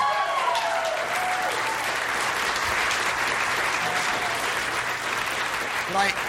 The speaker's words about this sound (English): So the very place that we are now is the organization that taught me how to improvise. So again, a round of applause for that.